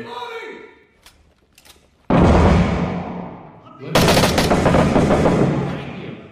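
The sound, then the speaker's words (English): Video game gunfire erupts in two loud, sustained bursts of rapid automatic shots, separated by a short lull, after a brief moment of a voice speaking at the start. “Is he shooting through that door?”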